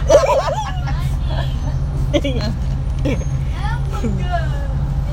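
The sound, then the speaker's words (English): Steady low engine rumble of a moving bus fills the interior, with several people chattering and laughing throughout. “That's today after talking about the other bus, I was like, God, I'm so happy I'm on this bus.”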